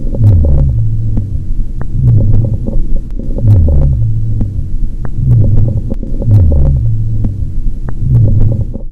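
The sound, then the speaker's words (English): Coarse, rumbling lung sounds through a stethoscope, from a patient with secretions or fluid buildup in the lungs: a low gurgling rattle repeating in a steady rhythm about every second and a half, with scattered crackly clicks and a constant hum underneath. “Coarse breath sounds are the noises you'll hear when the patient has secretions or fluid buildup in the lungs.”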